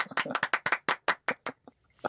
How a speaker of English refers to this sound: I like how you guys do that. The clap, that's good.